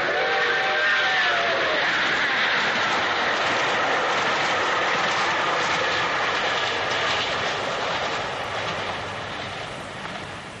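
A train rumbles loudly along railway tracks in a steady, dense roar. Faint whistle-like tones sound in the first couple of seconds, and the noise eases slightly toward the end.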